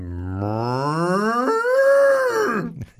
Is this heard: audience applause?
no